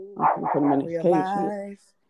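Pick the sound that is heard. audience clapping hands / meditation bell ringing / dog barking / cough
dog barking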